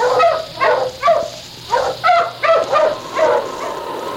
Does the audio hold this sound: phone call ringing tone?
no